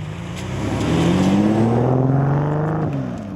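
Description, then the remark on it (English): A classic GTE car's engine drones and rises in pitch as it pulls away, a steady rumbling rev that swells then slowly fades, with no voices. “He just drove off in the GTE.”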